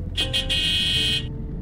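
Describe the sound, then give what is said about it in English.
A car horn gives two quick beeps and then one long, steady honk, bright and loud over a low engine rumble. “See, you say I'm a bad driver, but no one ever beeps at me.”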